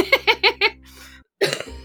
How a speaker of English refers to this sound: Okay, so excuse me for coughing occasionally today.